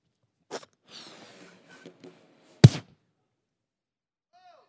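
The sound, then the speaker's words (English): A balloon being blown up during a talk about the Holy Spirit bursts unexpectedly with a single loud, sharp pop, preceded by a few quieter rubbery squeaks and breathy puffs, then near silence afterward. No one speaks. “So what I was saying is that was going to be the outpouring of the Holy Spirit on y'all when that balloon bust.”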